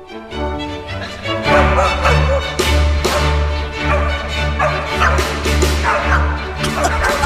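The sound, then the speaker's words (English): Small dogs yap and bark in scattered, irregular bursts over a steady, sustained musical backing, the barks loud and without any clear rhythm, while a man points a conductor's baton at them. “Yeah, random bark.”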